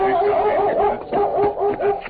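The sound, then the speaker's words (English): A large German shepherd named Chief barks and yelps excitedly in welcome as it circles a horse at the Circle M Ranch in northern Texas, a quick run of high, wavering calls, fairly loud, with a brief pause midway before another burst. “As Tonto dismounted, the Colonel's dog, a large German shepherd named Chief, circled Scout, barking a welcome.”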